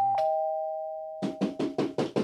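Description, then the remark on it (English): A doorbell strikes a single ringing tone that hangs and slowly fades, then six short, sharp bursts follow in a quick, even rhythm. No one speaks. “Is that someone at the door?”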